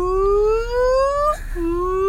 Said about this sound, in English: And then the siren.